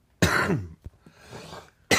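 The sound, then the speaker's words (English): A harsh cough bursts out loudly, blamed on damp weather and trees, followed by a brief click and a softer, breathy wheeze, then the start of another cough at the end. No talking. “Sorry about the cough.”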